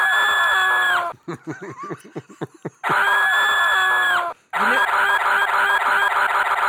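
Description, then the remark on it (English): A sound effect of a boy and a girl screaming together in loud, sustained, high-pitched bursts: one long scream, a choppy stretch of short cries, then two more drawn-out screams. “But listen, that's a boy and a girl screaming at the same time.”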